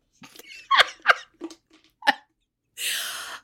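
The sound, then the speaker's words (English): A sneeze, preceded by a few sharp, choppy breaths and catches, then a longer breathy burst of noise to finish. It's fairly loud, with no talking. “God bless you.”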